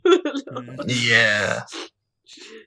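A single sneeze: a few halting, gasping intakes build up before a loud, breathy burst, followed by a short trailing exhale and a faint breath after a pause.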